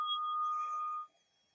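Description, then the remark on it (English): A single meditation chime is struck and rings out with a clear, bright tone and a faint higher overtone, sustaining for about a second before quickly dying away into quiet. “Allowing the chime to call you to presence.”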